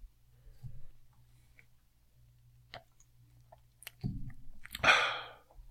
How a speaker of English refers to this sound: I'm sorry I took a sip of my tea.